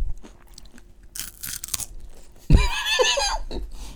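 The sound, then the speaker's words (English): People crunch and chew crisp Ferrero Rocher chocolates, with a sharp crackly bite around the midpoint followed by louder, sustained wet munching and crunching. “I mean, I don't know if this is good listening, just listening to us eat Ferrero Rocher, but...”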